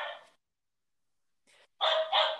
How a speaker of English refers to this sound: All right, guys, I got a dog barking out here.